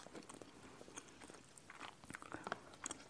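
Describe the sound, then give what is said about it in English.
Soft chewing of gummy bears made with Dom Perignon Champagne, with wet, sticky mouth sounds and small smacks repeating irregularly over a few seconds, no talking. “Pardon the mouth chewing sounds.”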